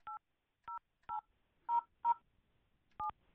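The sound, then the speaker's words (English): Six short touch-tone beeps as someone dials 9 and then 1-800 on a telephone keypad, each a steady dual-pitched tone, pressed at an uneven pace with brief silences between them and no voices. “It's not letting me call out. I dial 9 and then 1-800.”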